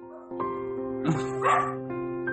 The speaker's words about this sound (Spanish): peleo con mis perros porque no se quedan quietos y es imposible que yo grabe un podcast sin que ellos estén ladrando. Así que mil disculpas si en todos mis podcasts van a escuchar un perro ladrar.